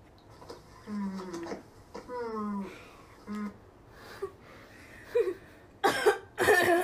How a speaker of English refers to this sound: I'm sorry. All this coughing is making my phlegma come. That's disgusting.